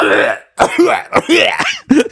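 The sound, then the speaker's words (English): A phlegmy, gravelly throat clearing followed by several rough, wet coughs in quick uneven bursts, fairly loud, with short pauses between them. “You've had a fucking phlegm issue for like a month.”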